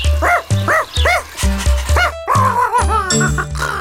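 A dog barks loudly in a quick, steady series of about seven sharp, yelping barks, with a faint sustained tone running underneath.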